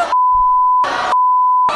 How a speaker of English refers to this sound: You gotta bleep one single word, though.